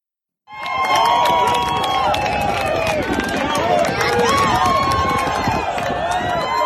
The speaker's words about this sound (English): The cheering you hear is from an Instagram post on March 13th from Jerry Falwell Jr.'s feed.